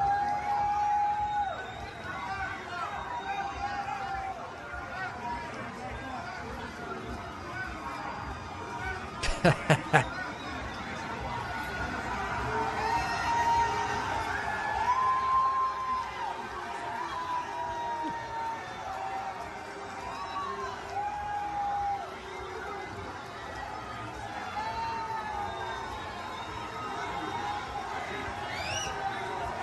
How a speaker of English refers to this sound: He tried going to a football game in Iowa, Iowa versus Iowa State. This is college football. And he was brutally, brutally booed. There are cheers as well, I won't lie. But there are a lot of boos there.